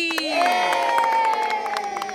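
A crowd cheers and shouts to welcome Group B's drama performance, with high, sustained voices of what sound like children over a steady patter of clapping hands, loud throughout the brief burst.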